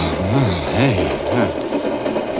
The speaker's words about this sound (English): Hey, this thing's moving. Sure, friend. It's okay. You're in a freight car.